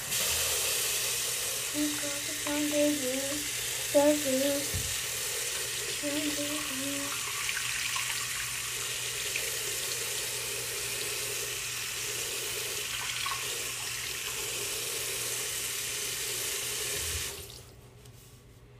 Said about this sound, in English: Wash off my toothbrush before I brush my teeth. I don't know if you guys do that too, but I definitely do.